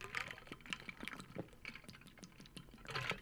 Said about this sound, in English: I had to take a quick little water break. Apologies for the little, for confusing you for 2 seconds.